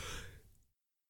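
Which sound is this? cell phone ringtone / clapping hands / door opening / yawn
yawn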